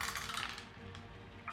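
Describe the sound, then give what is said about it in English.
Dice clatter and roll across a table during a tabletop role-playing game roll, in a quick burst of small hard clicks, fading slightly before a final tap, with no voices. “Got a 16 with a 6 and a 5 on the dice.”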